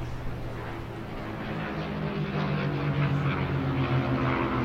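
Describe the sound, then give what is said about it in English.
A Spitfire or Hurricane propeller fighter drones steadily at the Goodwood Circuit, West Hampnett, a former World War II fighter base, its low, throbbing engine note holding a continuous harmonic rumble that swells slightly louder toward the end. “And there are a lot of Spitfires here this weekend, and Hurricanes as well,”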